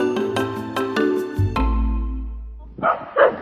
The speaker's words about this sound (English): What a good guard dog. Oh, that's why she's barking at me. No treats.